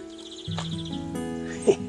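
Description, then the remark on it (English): A greenfinch gives a quick, evenly spaced trill of bright notes, fairly faint, over a steady low droning hum, with a brief soft knock near the end. “That is a greenfinch.”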